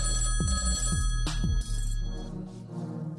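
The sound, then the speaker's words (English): A telephone rings with a sustained electronic warble layered over a low hum, then cuts out after about a second and a half, leaving a faint fading tone with no voices. “We have an don't actual stop phone ringing.”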